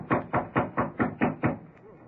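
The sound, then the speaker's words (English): A quick, steady series of seven knocks on a wooden door, evenly spaced, followed by a brief quiet pause. “Here's York's door. I'll knock to let him know we're here.”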